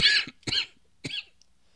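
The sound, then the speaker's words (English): Three short, harsh coughs in quick succession, the first loudest and the last a rougher, throat-clearing rasp, with quiet gaps between and no talking. “Sorry, I'm fighting through a cough here.”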